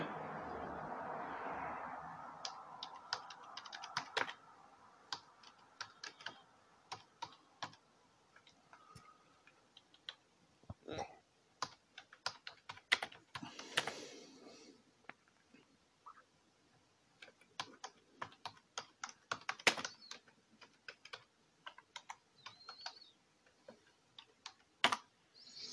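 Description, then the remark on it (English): Steady clatter of fingers typing on a computer keyboard, irregular bursts of sharp key clicks with brief pauses, fairly quiet and with no voices. “I'm typing.”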